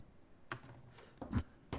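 A few computer keyboard keys are pressed at irregular intervals, each a short, soft click standing out against quiet background hiss, with no talking.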